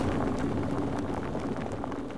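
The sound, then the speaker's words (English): Amber beer from a craft beer box pouring into a pint glass: a steady, continuous rush of foaming, fizzing liquid with a low gurgling undertone, holding an even loudness for about two seconds with no talking. “If you can hear it, if you can't hear this, Pete is pouring some amber nectar, some beer, into a pint glass.”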